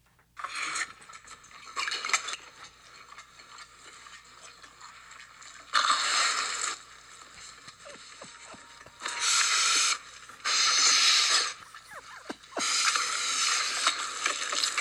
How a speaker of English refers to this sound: So if you like this kind of thing and you're kinky about like weird mouth sounds, watch this movie. So this is a little cut of, this is literally him eating.